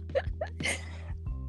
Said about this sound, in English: I just burped. TMI.